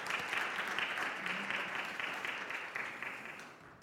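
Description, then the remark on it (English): A church audience applauds together for James's birthday tomorrow, a steady dense patter of many hands clapping at moderate loudness that carries on for several seconds before tapering slightly at the end. “And yeah, let's give James a clap for his birthday tomorrow.”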